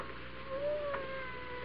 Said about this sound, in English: You know, it's funny. I hear a cat. He must be right in this room, but I don't see him. A cat? What cat? You mean, you don't hear that cat? Why, he's behind that wall. He has to be behind that wall.